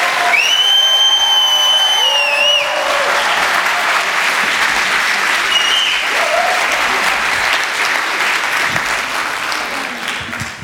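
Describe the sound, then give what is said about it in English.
An audience applauds steadily for about ten seconds, a dense wash of clapping that holds its strength before easing off slightly at the end, with a few high whistles early on. “Let's give Nathan a round of applause.”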